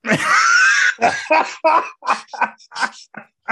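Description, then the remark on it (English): A loud, drawn-out sneeze with a strained, rising vocal tone bursts out, then a quick string of short, choppy vocal sounds follows. “God bless you.”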